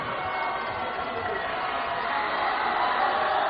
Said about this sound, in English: Student section from Owosso cheering his name.